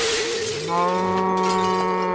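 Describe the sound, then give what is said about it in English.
A brief, loud burst of window glass shattering as a radioactive cow bursts through the window, quickly followed by a long, low cow moo that holds steady to the end. “A radioactive cow has burst through the window.”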